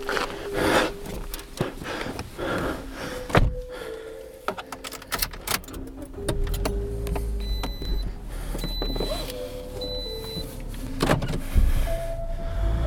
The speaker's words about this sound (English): Maybe it was just the running water and the cars driving by. But there was something alive down there.